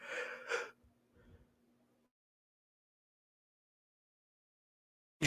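A single sharp sneeze, set off by something odd happening on the nose, bursts out, followed by a faint sniff and then a long stretch of near silence.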